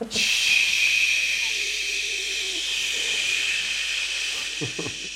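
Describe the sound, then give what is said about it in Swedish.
A voice imitates a man spraying deodorant in the morning after getting up on a nightliner tour bus, with a long, steady, bright hiss lasting about five seconds, held at a fairly even loudness before trailing off. “Och på morgonen då klev han upp och så började han att spraya sån här deodorant, spraydeodorant, han så stod han liksom för, ja.”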